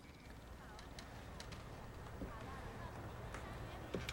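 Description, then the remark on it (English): Steady, sharp footsteps tap at a measured walking pace in a tense film scene, over a dense low rumble with muffled voices murmuring in the background. “Again, listen to the footsteps, the tension.”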